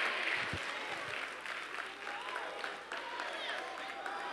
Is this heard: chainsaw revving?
no